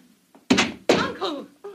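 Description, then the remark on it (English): A thrown spear slams into a wooden door with a heavy thud, missing a person by an inch, followed quickly by a second loud impact, with brief voice-like sounds mixed in and a short quiet tail. “The spear missed her by an inch.”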